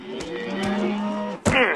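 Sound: cattle mooing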